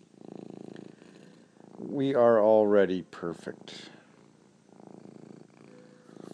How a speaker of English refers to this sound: Listen to that cat purr.